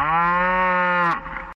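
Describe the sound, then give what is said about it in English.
A dog gives a single long moo, loud and steady for about a second, then trailing off into a short breathy tail. No talking. “bark or moo? Lola the dog thinks she's a cow.”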